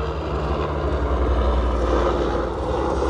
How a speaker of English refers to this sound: Damn, I love my city, but it's always a fucking helicopter when I'm trying to record the podcast.